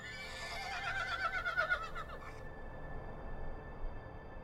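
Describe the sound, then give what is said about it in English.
A horse enclosed in a corral by a farmhouse and stable, in warm sun, gives a shrill, wavering whinny for about two seconds, then the call fades and only a low outdoor rumble remains. “Horses enclosed in a corral.”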